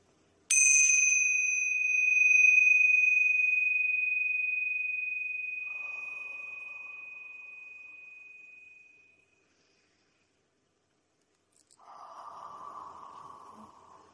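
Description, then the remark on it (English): A single bright strike of tingsha cymbals rings out with a pure, high shimmering tone that slowly fades over several seconds, rung at the start of a spiritual channeling session. After a pause, a soft breathy sound follows near the end. “I will ring the tincture bells to clear out any negative energy and create a pure, sacred space for trans channeling.”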